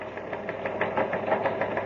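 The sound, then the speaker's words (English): A teletype machine in the newsroom of the Outer Space Dispatch, Terra's biggest newspaper, clatters steadily, printing a bulletin from Buzz Corey on news tape with a fast, even rhythm of mechanical strikes over a continuous whirring hum. It runs alone at moderate loudness, with no voices. “It's coming over the teletype here in the newsroom of Terra's biggest newspaper, the Outer Space Dispatch.”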